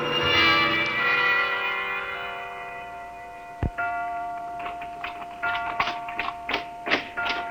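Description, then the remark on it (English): A clock chime rings out with a rich, resonant bell tone that slowly fades, followed by a single sharp knock and then a steady series of crisp ticks. “Clock.”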